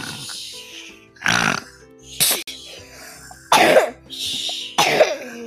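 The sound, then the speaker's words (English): A series of harsh coughs from a person reading a book aloud, about four separate bursts spaced irregularly over a few seconds, each loud and raspy with quieter breathing in between. “And now I'm coughing.”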